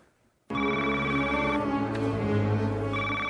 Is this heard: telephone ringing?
yes